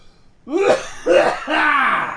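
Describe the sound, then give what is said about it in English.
Three fairly loud coughing bursts in quick succession, each rough and voiced, the last one drawn out a little longer, with no talking. “Excuse me, I'm going to have to cough.”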